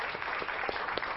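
A brief burst of audience applause, a steady, dense crackle of many hands clapping at once with a few sharper claps standing out, moderately loud and without any voices.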